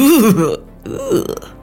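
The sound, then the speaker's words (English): A loud, gurgling retch with a wobbling, throaty pitch, followed by a rougher, breathier heave, like someone burping just before being sick. “If you're gonna spew, spew into this.”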